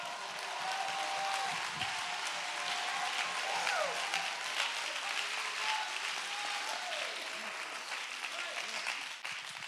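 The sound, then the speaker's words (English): An audience claps steadily and cheers, a dense wash of applause with raised voices shouting and whooping over it, staying loud and sustained throughout. “If you believe that, I want you to identify your confidence in that by clapping your hands and lifting your voice in this house right now.”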